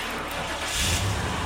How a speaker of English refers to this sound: The sweet music of the engine turning over and sputtering to life was one of the most beautiful sounds I'd ever heard.